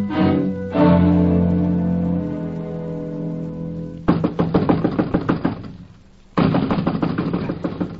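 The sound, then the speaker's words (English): Knuckles rap rapidly on a wooden door in two loud flurries separated by a short pause, after a sustained tonal sound fades out. “I'm wearing my knuckles to the bones knocking on this door, Chief.”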